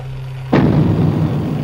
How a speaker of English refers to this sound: First, I didn't really understand what I was hearing. It sounded like an explosion, then the fake silence of an analog hiss, and then the noise again. Was it a drum beat? And another boom. No. I realized what I was hearing was footsteps.